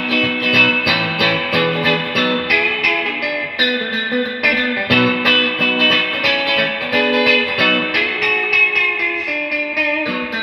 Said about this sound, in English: I got it out the other night, though, just messing around and just want to just try some of these weird reverby sounds. And it's fun, man. It does the trick.